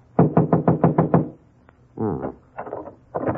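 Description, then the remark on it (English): A locked apartment door is shaken hard, giving a quick run of about six loud, rattling thumps, followed by a few shorter, duller rattles after a brief pause. “Door's locked.”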